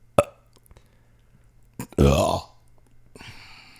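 A cat's single loud, throaty burp lasting about half a second, preceded by a couple of sharp clicks and followed by a soft hiss.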